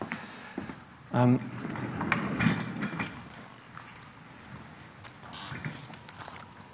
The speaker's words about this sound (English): So I'm just going to grab a chair here.